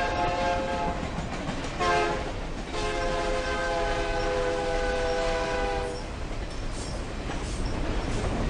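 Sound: train running on rails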